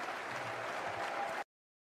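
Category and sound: crowd, audience applause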